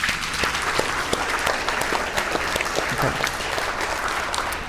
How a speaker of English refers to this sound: All right, let's give them a round of applause as they go.